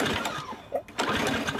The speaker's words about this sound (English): I have put up with this stupid lawnmower barely running all season. I'm over it. It's gotta go. Your old mower barely runs.